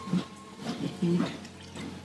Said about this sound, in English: Just getting some water into me.